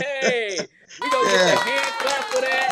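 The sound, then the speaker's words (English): A crowd breaks into steady clapping mixed with loud cheering and whooping voices, following a brief shouted exclamation and a short pause. “We gonna get a hand clap for that.”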